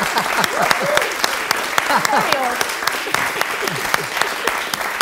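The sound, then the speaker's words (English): A round of applause for someone's quirky party trick of imitating a crying baby: dense, steady clapping lasting several seconds, with voices talking and laughing over it throughout. “It really doesn't deserve a round of applause.”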